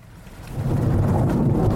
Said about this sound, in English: The wind brought clouds and rain.